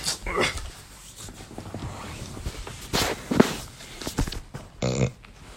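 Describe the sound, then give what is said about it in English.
A single short, throaty burp erupts near the end, following several seconds of shuffling, rustling movement noises, as someone stretches trying to release gas bubbling in their stomach. “Burp. Ugh.”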